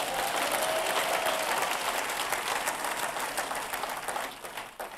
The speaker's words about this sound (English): Amen. Clap your hands.